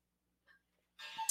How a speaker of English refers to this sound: Yay, there's the clock. The clock is off, by the way, by about 5 minutes.